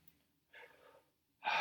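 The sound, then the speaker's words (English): Quick, forceful breaths: a breathy exhale followed after a short pause by a sharp, loud inhalation, part of a second round of rapid connected breathing at an increased tempo, with no talking. “Second round of connected breathing. I'm gonna increase the tempo.”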